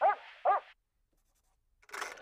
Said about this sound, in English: A dog says...